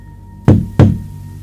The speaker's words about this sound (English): knock knock